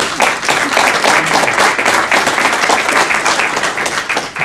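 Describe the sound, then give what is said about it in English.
A crowd applauds steadily to welcome a speaker, dense overlapping claps forming a bright, crackling wash of sound that holds at a fairly even loudness throughout, with no voices breaking through. “We could welcome Jeff with a spontaneous round of applause.”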